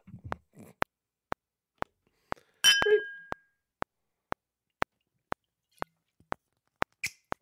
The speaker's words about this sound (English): Let me drink to that. Cheers.